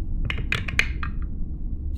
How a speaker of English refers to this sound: And yet I rolled a yes. Ah, the power of the dice.